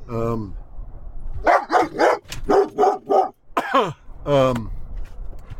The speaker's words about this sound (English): There's a dog there, sweetie.